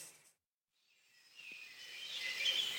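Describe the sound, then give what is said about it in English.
After a brief moment of near silence, a chorus of wild birds swells up in woods in Monmouthshire in May, around 7:30, with many overlapping songs and bright chirps, steady and unbroken, with no one speaking. “through mainly birdsong, and involves a walk I took around about mid-May through some woods near my home in Monmouthshire, and I thought it might be a nice change to let the birds do some of the talking.”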